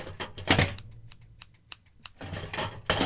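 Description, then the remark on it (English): Scissors snip in a quick series of crisp, sharp cuts, with busier rustling cutting at the start and end and several distinct single snips in between. “Scissors.”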